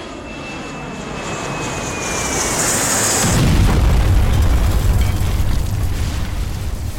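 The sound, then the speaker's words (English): A jet roars overhead with a high engine whine sliding downward, then a sudden deep explosion erupts and rumbles on heavily as the plane crashes into the South Tower of the World Trade Center. No one speaks. “The plane was getting close, too close to the World Trade Center, and then suddenly, it crashes directly into the South Tower and explodes.”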